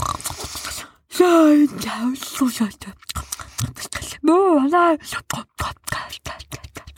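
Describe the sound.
A voice imitates the snoring of the story character Sniz, who is fast asleep: a few drawn-out, rasping breaths, two louder voiced snorts with a rising-falling tone, and softer breathy snuffles between them, fairly loud.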